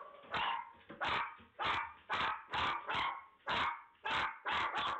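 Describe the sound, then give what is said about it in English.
Dogs bark repeatedly in a steady, rapid series of loud barks, about ten in five seconds, with no talking, caught by a monitoring camera in a son's room as a stranger climbs onto the bed. “making her way onto the bed as the dogs are barking.”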